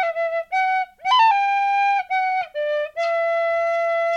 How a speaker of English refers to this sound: Well done. The last one was very effective. I really like that last one. So there is your five tin whistle tunes.